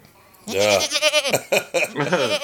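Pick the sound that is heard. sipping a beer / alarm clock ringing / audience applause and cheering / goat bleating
goat bleating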